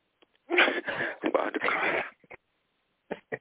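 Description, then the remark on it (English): A loud, breathy sneeze bursts out in a rough, sputtering rush lasting over a second, followed by a few faint short sniffs or breaths; no one speaks. “God bless you.”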